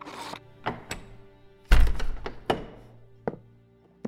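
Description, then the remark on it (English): A heavy door is opened by two guards to let a visitor in: a few sharp latch clacks, then one deep, booming thunk that rings briefly, followed by a couple of lighter knocks and clicks as it settles. “Tell these two knuckleheads to open the door and let me in.”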